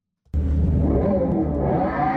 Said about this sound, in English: Do you want me to play the sound of the car again?